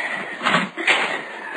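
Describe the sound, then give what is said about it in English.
Huge heavy wooden doors at the entrance of a gray building scrape and groan as a man pushes them open with an effort, two drawn-out grinding surges over about a second and a half, moderately loud, with no voices. “The huge wooden doors were slightly ajar at the entrance, and with an effort, Mark pushed them open and led us inside.”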